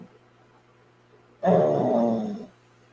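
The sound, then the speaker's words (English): A dog lets out a single raspy, rumbling snore lasting about a second, fairly loud, with quiet stillness before and after. “Can you hear him snoring? That dog's actually snoring.”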